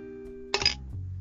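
A single bright clink of glasses touching in a toast, brief, with a short ringing tail over a low steady background hum.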